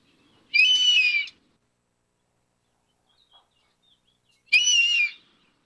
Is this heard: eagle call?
yes